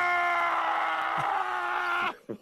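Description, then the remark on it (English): A man lets out one loud, sustained yelling scream that holds steady for about two seconds, then cuts off into a short gasp. “If I was Howie Roseman after the game Sunday, I would yell and scream.”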